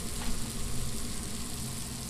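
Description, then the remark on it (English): Farm duck breasts sizzle on a grill in the kitchen of Cole's restaurant on Main Street in Lexington as the staff cook, a steady, dense hiss and crackle of fat that holds at an even level throughout, with no voices. “Space is tight in the restaurant kitchen as the staff prepares salads and cooks farm duck breasts on a grill.”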